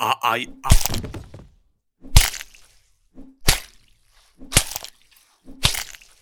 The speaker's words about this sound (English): The woodsman beat the wolf's skull in until it transformed back into Anthony Hopkins